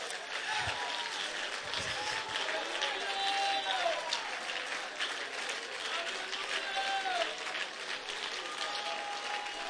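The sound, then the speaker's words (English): A church audience, urged to clap faster, claps rapidly and steadily in a dense, continuous wash of applause, with scattered voices calling out over it throughout. “No, clap a little faster than that even.”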